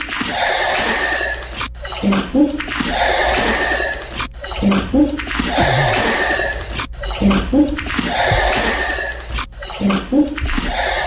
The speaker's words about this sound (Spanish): Estoy casi segura que se refieren al sonido del principio, que se siente como si se estuviera caminando en agua. Sí, como si estuviera corriendo agua, más bien.